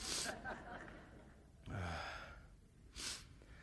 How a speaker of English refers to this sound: I'm sorry, my nose is, I'm going to sniffle a bit. I'm allergic to you guys.